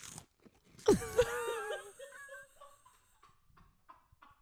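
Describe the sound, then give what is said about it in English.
A single loud crunch as someone bites into crunchy food, followed by a brief squeaky, wavering ring that fades out. A few faint chewing clicks trail off. “This is me chewing. This is me chewing it.”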